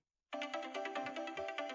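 A bright, synthetic film-score melody from a scene with Falcor, in the style of a phone ringtone, starts after a brief silence, with quick repeating notes in a steady rhythm, clear with no talking.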